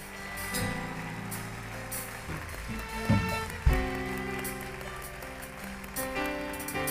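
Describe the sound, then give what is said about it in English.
A church audience claps together for the Lord in a steady, dense patter of many hands, layered over sustained keyboard or organ chords, with a couple of louder thumps partway through. “I want you to give the Lord a mighty clap of praise.”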